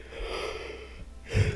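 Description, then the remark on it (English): A long, breathy yawn, drawn out for over a second, swelling into a louder airy exhale near the end. It is fairly quiet, with no talking. “That yawn was timed perfectly.”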